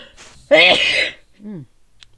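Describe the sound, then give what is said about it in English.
A single sharp, loud sneeze, a voiced gasp bursting into a harsh blast, followed by a brief low murmur and then quiet. “I'm going to sneeze.”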